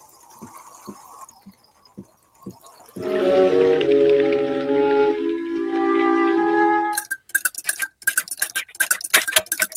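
A rain effect made by slowly rotating a tube of little finishing nails nailed on strips and a couple handfuls of Mexican peas: sparse ticks, a sustained humming tone, then a quick, dense pattering of clicks and rattles, with no voices.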